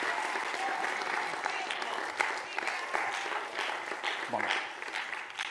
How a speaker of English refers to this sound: Give God a hand clap of praise today, because we have the opportunity, church.